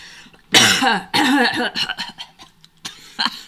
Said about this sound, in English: Now I'm going to clear my throat